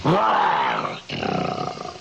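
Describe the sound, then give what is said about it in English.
A man's voice imitates Carmichael, Jack Benny's bear guarding his vault, letting out a loud, rumbling growl that rises into a roar, briefly breaks off, then continues as a rough, pulsing snarl. “For 6 months, that's all I did was a growl of a bear.”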